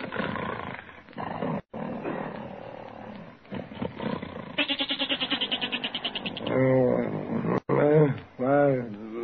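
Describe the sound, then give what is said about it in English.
A goat bleats loudly at night, a long quavering baa followed by a couple of shorter wavering cries, after several seconds of rough, growly animal noises. “Oh, listen to that goat, Peg. He's been baaing all night.”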